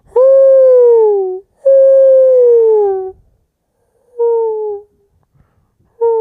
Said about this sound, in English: Sad owl. Sad owl.